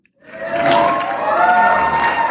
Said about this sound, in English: Thank you. Thank you for that intro. Yes, keep clapping, please. Are those the only applause you've ever received in your professional career?